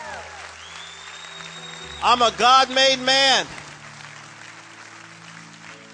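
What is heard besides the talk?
audience clapping hands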